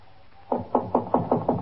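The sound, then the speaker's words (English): Six quick knocks rap on a wooden door in an even, steady rhythm, fairly loud against a quiet background with no one speaking. “Just knock on the door.”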